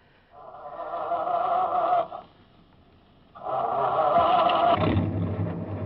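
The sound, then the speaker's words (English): A truck engine cranks and revs in two loud, droning bursts separated by a brief pause, then a deeper rumble swells as the truck pulls away. “Keys are in the truck.”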